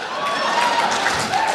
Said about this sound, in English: I'll keep going as long as you're clapping.